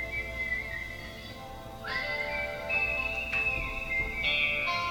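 A whistled tune of a song, played on a phone, alone: a clear high tone sliding between held notes and small pitch bends, with occasional higher leaps, steady and moderately loud over faint background noise.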